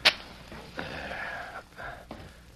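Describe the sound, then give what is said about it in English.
A match is struck to give light, with a sharp scratch, then a breathy hiss of flaring flame follows for a couple of seconds, briefly sputtering before hissing again. No one speaks. “I'll strike a match so we can see what we're doing.”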